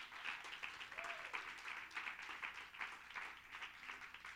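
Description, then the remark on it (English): A seated church audience claps hands in praise during a Father's Day worship service, steady, overlapping applause, a dense crackling patter that continues without a break. “Clap your hands if God has been good to you this week.”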